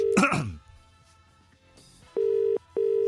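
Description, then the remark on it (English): A brief throat-clearing noise, a short quiet pause, then a telephone ringing tone sounds twice in quick steady pulses, clear and fairly loud, as an outgoing call to radio presenter Tommy Boyd rings through, phoned straight to air on a radio show. “He does know I'm calling.”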